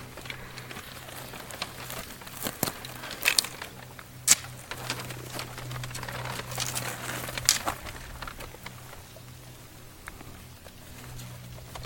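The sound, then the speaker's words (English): Paper maps rattle and crinkle in irregular bursts of soft crackling, with a few sharper rustles standing out. The sound is fairly quiet, with no voices. “The rattle of paper maps.”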